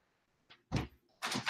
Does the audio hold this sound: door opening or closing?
yes